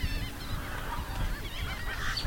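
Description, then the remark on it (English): A dense, continuous chorus of shorebird calls at a rookery in the coastal brush of Green Island, with overlapping honking and squawking voices filling the scene at steady loudness, busy, with no talking. “Birds are just everywhere in the brush here.”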